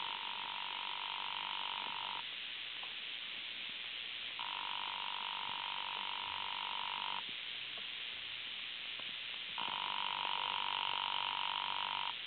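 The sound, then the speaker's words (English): A telephone rings unanswered in hotel room 304: three long, buzzing rings, evenly spaced with short pauses between, heard thinly as if through a phone line, with no voices. “There doesn't seem to be any answer.”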